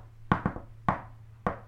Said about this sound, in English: I actually am going to do the knock on the door. Rubbish knock. That was a good knock. Was it? Yeah. That kind of knock. I thought it was like a ding, ding, da, ding, ding. Like a little it was. Happy it little had a rhythm to it.